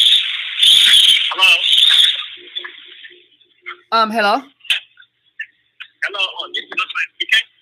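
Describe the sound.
Garbled, poor-quality phone call audio from a caller: a harsh, crackly, thin voice breaks up in choppy bursts, with a clearer voice speaking briefly between the distorted fragments.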